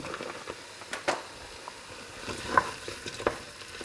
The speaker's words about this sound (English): And then I'm going to add the chicken pieces to get those starting to cook.